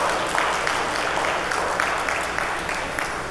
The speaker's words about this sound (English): So please give her a round of applause to embarrass her.